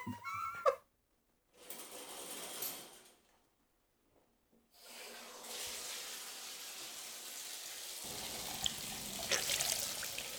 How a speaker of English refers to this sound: Rub-a-dub-dub. I'm in my tub, but it's a shower. It's not a bathtub. I'm washing my hair.